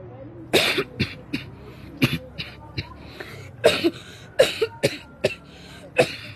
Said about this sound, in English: that cough still isn't getting better. Have you been drinking the lemon water?